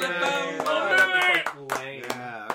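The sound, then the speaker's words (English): A few people clap in scattered, uneven bursts over a sustained backdrop of cheering voices, moderately loud, the claps thinning out toward the end. “Everybody applause”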